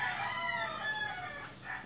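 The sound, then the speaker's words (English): A rooster crows loudly, a long, strained cock-a-doodle-doo with sustained harmonic tones, nobody speaking over it. “I can hear you and roosters for a bit.”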